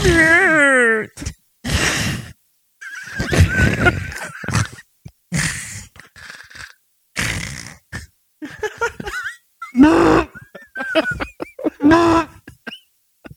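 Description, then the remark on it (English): Several people take turns imitating a deer's call, making loud, wavering, nasal honks and bleats in short bursts with gaps between them, some rising and falling in pitch. “Everybody do an impersonation of what a deer actually really sounds like.”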